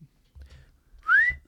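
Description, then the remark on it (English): A man imitates a loud whistle at a wedding: one short, sharp, upward-sliding tone, piercing, standing alone after a moment of quiet with faint low rumbling underneath. He whistles very loudly after stepping out of the room during the first look. “… stepped out of the room and very loudly whistled”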